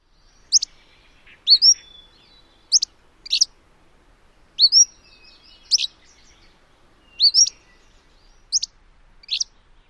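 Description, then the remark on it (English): An Empidonax flycatcher song of short, sharp, high-pitched chirps, some paired, repeating at uneven intervals of roughly a second. The notes are clear and isolated against a quiet background, with no talking. “There's a very similar phrase in their full song, which is a really good hook for their song if you can hear that receipt or that dog whistle call.”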